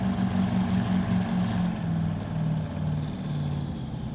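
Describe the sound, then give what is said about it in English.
A speedboat engine runs with a low, steady drone, its pitch dipping and wavering as it is shut down a few minutes after a fast run out past a harbour mouth toward Fort Monckton, with constant wind and water noise underneath. “And then, just a few minutes later, he shuts down the engine.”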